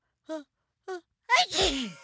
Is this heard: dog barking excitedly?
no